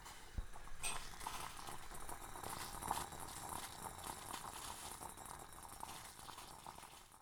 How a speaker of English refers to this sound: Right, I'm just putting the orange peel into a pan of water.